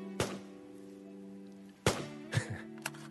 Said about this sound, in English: It's not, there's no words at all. It's just gunfire, dudes shooting into a hill with their awesome semi-automatic rifles, and just words up on the screen telling us about the awesome bullets that they're using.